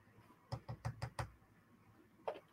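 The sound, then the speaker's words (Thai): A frowning man taps his fingers on a hard surface in five quick, evenly spaced, crisp taps, followed by a short pause and one softer double tap near the end. No one speaks. “นายผู้ชายหน้าบึ้งเคาะนิ้วมาทันที”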